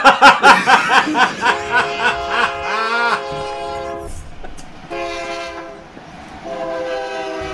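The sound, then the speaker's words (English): A cartoonish steam train effect: a quick run of rhythmic chugging puffs, then a loud, sustained multi-tone whistle that wavers before fading. Prominent, with no talking. “No, because they were fooled by the onion choo-choo train.”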